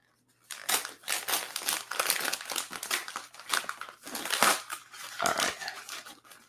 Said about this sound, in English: Try to unwrap this here. Just kind of unwrap this little gift here. And as we're unwrapping this, I'm not sure if you guys can see this or not, but this is actually, this is pretty cool. This is actually another gift inside.